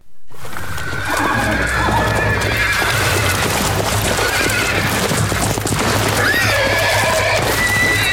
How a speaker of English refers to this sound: In fact, unfortunately, perhaps your animal sounds wheel is closer to the truth. in this case, because these horses are basically screaming to the sound of being killed.